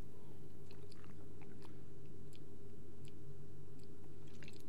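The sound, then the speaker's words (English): Mouth sounds of someone opening and sipping apple juice: soft scattered clicks, slurps and swallows spread across a few seconds over a steady low background hum, with no talking. “So without further ado, let's crack it open. For a sip.”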